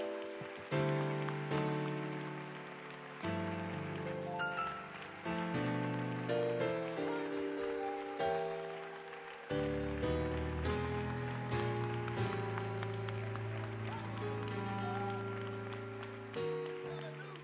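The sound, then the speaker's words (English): An audience claps their hands unto the Lord steadily in a dense, continuous wash of hands, layered under loud sustained chords from instruments that change every few seconds. “Clap your hands unto the Lord all over this house.”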